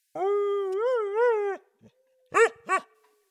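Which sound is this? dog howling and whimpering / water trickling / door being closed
dog howling and whimpering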